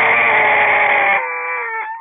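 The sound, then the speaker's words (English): A crow call is blown with a growl in the back of the throat. It has a raspy, growling texture, holding a harsh caw for about a second before thinning into a cleaner, wavering tone that tapers off. No talking. “I want you to put a little growl in the back of your throat. And that's going to get that crow sound out of it, hopefully.”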